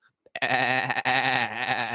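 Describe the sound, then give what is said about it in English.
A single drawn-out, wavering sheep-like bleat lasting about two seconds, loud. It is most likely a human voice imitating a sheep. “Because you're stupid. Because you're a sheep.”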